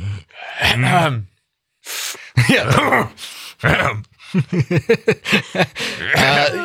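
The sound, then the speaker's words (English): A man vocally imitates a middle-aged man's 'dad noises', a string of grunts, groans and throaty exhalations, fairly loud, in irregular bursts with brief pauses between them. “it's like the middle-aged man, like, dad noises. Just like... It's like Aaron grunting and eating randomly”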